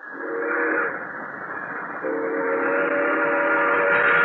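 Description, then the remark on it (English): An express train roars through San Amado, a prairie town, at night without stopping, its loud, sustained whistle blasting in two long tones over a broad rumbling wash of noise, growing louder toward the end. “An express train roaring by.”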